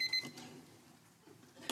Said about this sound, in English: Timer is not happy. Okay. Excuse me.